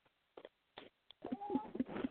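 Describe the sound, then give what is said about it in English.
Pet birds squawk for crackers, a few short separate calls first, then a busier run of overlapping squawks and tonal chirps near the end. Nobody speaks. “Sorry, pony birds were squawking for crackers.”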